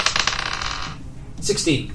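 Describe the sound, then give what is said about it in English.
A twenty-sided die, rolled for an arcana check, clatters and rolls across a hard tabletop for about a second, a bright rattle of quick bounces settling down on 16, followed by a brief murmur of voices. “Come on, dice, don't fail you.”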